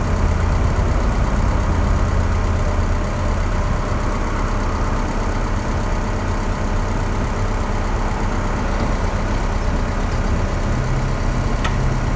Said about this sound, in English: Reverberating effects from this train.